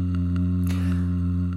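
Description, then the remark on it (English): A single short, raspy throat clear from a bit of swallowed popcorn stuck in the throat, over a steady low electrical hum, followed by a brief noisy trail and a faint click at the end. “I've just swallowed a bit of popcorn and it's stuck in my throat.”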